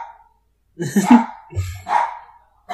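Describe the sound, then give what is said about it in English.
A dog barks in a few sharp, fairly loud bursts, with short pauses between them and the last bark cut off at the end. No one speaks. “The people on the podcast are just going to have to hear this, the dog barking in the background, because I feel like that's not going to stop anything.”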